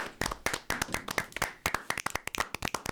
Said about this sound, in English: Clap it up for Jack Loader, everybody.